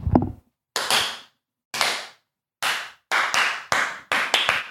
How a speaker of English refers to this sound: This is us clapping for ourselves. Thank you.